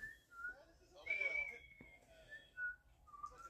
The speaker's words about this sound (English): Stop fucking whistling, damn